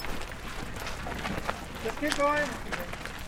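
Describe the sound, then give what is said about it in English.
Steady crunching footsteps on the pale yellow dirt of Redwater Pond Road during a commemorative walk by families living near a disaster site, fairly loud, with a brief voice heard faintly in the background partway through. “It's quiet as the walk down Redwater Pond Road begins, except for the sound of footsteps crunching in the pale yellow dirt.”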